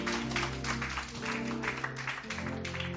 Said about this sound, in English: And clap unto the Lord again.